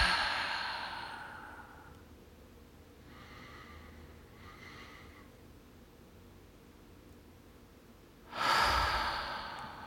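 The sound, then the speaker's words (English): Slow, exaggerated breathing: a long airy exhale, a couple of softer breaths, then a loud, forceful rush of breath near the end, with no talking. “Exaggerate every breath so you really feel it. Breathe it in. And breathe it out.”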